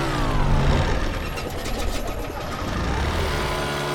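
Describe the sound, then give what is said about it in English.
The loud propeller engine of an old bush plane in flight drones steadily, then briefly falters and sputters in the middle before returning to its rough, continuous roar. “It sounded like the engine died for a second. These old bush planes do stuff like that all the time.”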